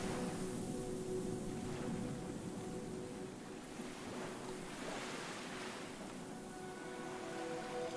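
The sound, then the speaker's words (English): Gentle ripples on a very calm sea lap against a ship in soft, rising and falling washes, over a steady low hum and light wind, with no voices. “The sea is as calm as can be, as you hear the tiny ripples gently waving up and down against the ship.”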